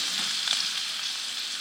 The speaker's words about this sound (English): Beef, onion, some seasonings. And now I'm frying it in olive oil that my mother bought.